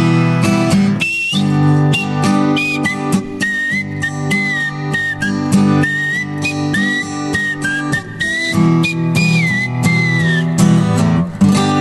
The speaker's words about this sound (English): You were doing, cheekily, you were going for the teeth whistle as well, not the lip whistle, the teeth whistle.